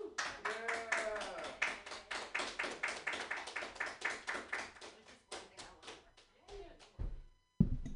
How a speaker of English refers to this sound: okay, clap for me.